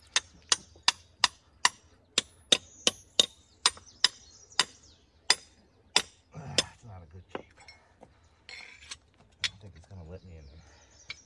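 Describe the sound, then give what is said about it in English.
A 2-pound or 4-pound hammer strikes rock in a steady, rapid series of about a dozen sharp, ringing blows, then slows into scattered hits amid scraping and shuffling, with a faint voice near the end. “Now, I use a 2-pound and 4-pound hammer only because you got to do it all day.”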